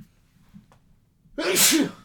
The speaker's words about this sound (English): Sorry about that. I can see the spike on the screen when I sneeze. I'm sorry about that, guys.